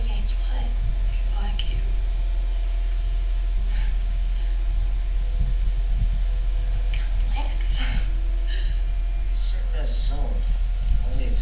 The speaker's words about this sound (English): Sorry, guys, those humming sounds are our fans because it's fucking humid and a billion degrees in here.